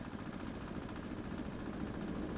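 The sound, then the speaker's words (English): A van engine idles with a steady, low rumbling drone, constant and unchanging throughout, at moderate volume with no voices. “Oh, listen to that engine.”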